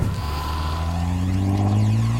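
A speeder engine hums steadily, then revs up, its low droning pitch climbing as the speeder pulls away to pick someone up. The sound stays loud and continuous for about two seconds, with no voices.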